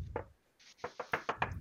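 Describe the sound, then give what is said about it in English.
Knocking on a brother's door upstairs: one knock, a brief pause, then four quick raps in a steady rhythm, fairly loud, with no voices. “So I run upstairs. I knock.”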